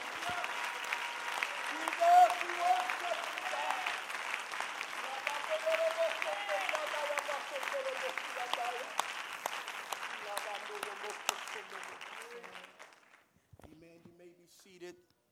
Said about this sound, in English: One more time, why don't you clap your hands unto the Lord and give him praise in this room.